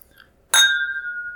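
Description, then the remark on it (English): A single bright clink of glass on glass rings out sharply as scotch glasses meet in a toast, then a clear tone hangs and slowly fades, with quiet ambience around it. “Cheers to Ligero, our boy. Thank you very much for the scotch.”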